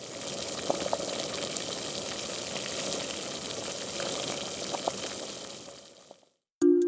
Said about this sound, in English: Okay, that sounds like boiling macaroni. Okay, first word, 100%. Boiling. What does macaroni boil in? Water. Boiling water.